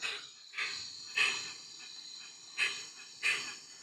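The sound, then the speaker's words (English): A bird called the stinkiest bird gives five harsh, wheezy, snorting calls at uneven intervals, each a short raspy burst with a grunting, pig-like quality. No one speaks. “Listen to that stinker. You can just tell. Kind of sounds like a pig.”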